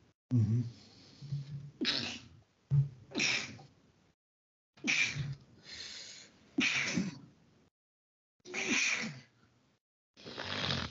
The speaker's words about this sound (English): Oh, excuse me, I don't have a cough button, so y'all have to pardon me.